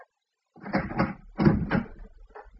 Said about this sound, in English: I got to the flat, rang the bell. There was no answer, and I tried the door.